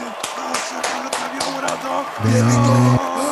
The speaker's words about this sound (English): Cue the fucking applause.